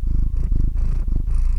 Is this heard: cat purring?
yes